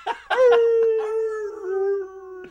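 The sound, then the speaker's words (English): A person imitates a howling dog with one long, sustained howl that slowly sinks in pitch, loud, opening with a couple of short breathy bursts. “A dog really should have been howling.”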